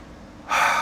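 A single sharp, airy breath drawn in after a brief moment of near-silence, loud and gasp-like, with no talking.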